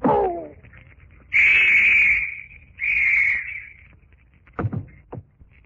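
A police whistle blows two loud, shrill blasts, the first long and the second slightly shorter, followed by a couple of brief knocks.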